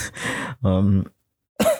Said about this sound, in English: and coughs apparently. So that's me.